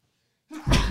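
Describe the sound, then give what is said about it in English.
A man sneezes once, loudly, muffled into his shoulder: a short sharp intake followed by an explosive burst of breath after a moment of near silence. “I want everybody to pay close attention to how he's sneezing into his fucking shoulder.”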